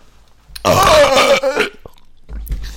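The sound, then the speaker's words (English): A loud burp rumbles out for about a second, rough and throaty, followed by a brief pause and a softer, shorter guttural sound. “That's not aggressive. It's just what my burp is.”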